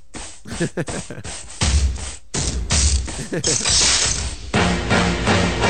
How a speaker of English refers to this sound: It's called the Dave Juskow Podcast Pen. And when you draw with it, it plays this song.